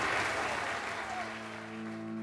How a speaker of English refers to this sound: With no harm done to him and a fantastic glow surrounding his person, the audience roars with applause.